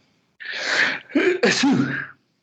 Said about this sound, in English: Gesundheit. Merci.